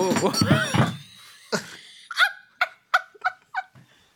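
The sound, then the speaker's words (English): After a moment of talking, a solid wooden object is accidentally knocked over by the speaker and thuds over, then clatters in a quick run of hollow, ringing knocks that come faster and faster as it rocks to rest. “I knocked you over. I'm really sorry.”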